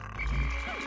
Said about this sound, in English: Oh, there's another frog.